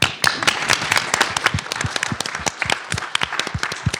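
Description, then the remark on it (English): A crowd at a talk's question session breaks into steady applause for a woman who asked a question, many hands clapping at once in a dense, crackling patter that holds at an even, fairly loud level for the whole stretch, with no voices. “Can I get a round of applause for her?”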